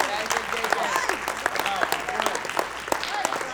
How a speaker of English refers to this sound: Oh, there they go again. There they go again. They standing up clapping. Some got their hands up.